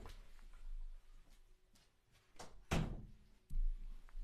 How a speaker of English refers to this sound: And I'm going to shut the door real quick.